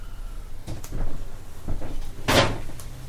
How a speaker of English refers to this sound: Trap door.